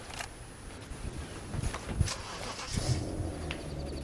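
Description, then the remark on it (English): A car engine cranks and settles into a low, steady rumble, fairly quiet, with a few scattered clicks and knocks over it and no one talking. “See if you guys can get the car running.”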